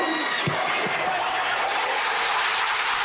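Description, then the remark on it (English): A single sharp thump near the start as a football is kicked at a game played in Texas, then a steady roar from a large stadium crowd that fills the rest of the moment. “You can hear the ball, you can hear the crowd, and then you just...”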